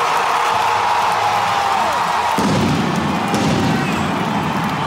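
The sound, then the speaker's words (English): Fireworks rumble and crackle over a loud, dense roar of a cheering crowd, with the low booming growing heavier midway through and the noise continuing unbroken. “Real fireworks are going off there.”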